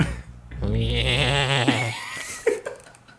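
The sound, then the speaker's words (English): A goat lets out one loud, quavering bleat lasting over a second, followed by a few short, softer noises. “He is the alpha goat, and he will fuck you up.”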